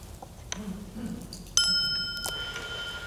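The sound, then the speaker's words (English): A single bell is struck once, ringing out clearly with a bright, sustained tone that slowly fades away, following a faint low murmur of voice. “So let's take a moment as we listen to the sound of the bell go into silence.”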